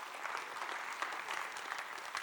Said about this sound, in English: Thank you to all of those who have helped make that happen. Can we just give those people a round of applause?